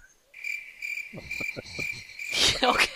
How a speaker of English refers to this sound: See if I can find that cricket noise that is behind.